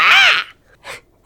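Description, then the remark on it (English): Someone imitates a gull's cry: a loud, harsh, rising-and-falling squawk, followed after a short pause by a briefer, softer second call. “And I go ritual cast find familiar to turn him back into a gull.”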